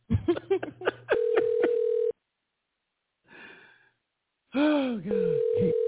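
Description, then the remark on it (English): A radio station's electronic telephone rings in two loud bursts of warbling, chirping tones separated by a pause, with a faint murmur in the gap and no one speaking. “This is the blog talk. This is the radio station phone.”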